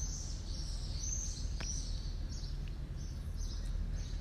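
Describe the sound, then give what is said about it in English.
Outdoor ambience in Marrakesh, Morocco, with birds chirping intermittently over a steady high-pitched drone of crickets, all riding on a constant low rumble of wind or background noise; no one speaks. “Can hear the birds and the crickets.”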